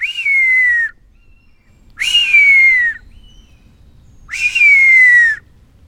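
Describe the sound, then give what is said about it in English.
Three loud whistles, each a high drawn-out note sliding gently downward, spaced about two seconds apart: a person whistling an imitation of an adult buzzard's mewing call to a young buzzard, with no talking. “So I think what happened there was that I mimicked the call of an adult buzzard, and the young responded to that”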